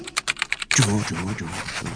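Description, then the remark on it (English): A quick run of sharp typewriter key strikes as the words for a book are typed in the Treehouse, about seven crisp clacks in a fast, uneven rhythm, then a voice takes over and the typing stops. “I write the words and Terry draws the pictures. Right. Type. Right. Type. Right. Type. Typewriter.”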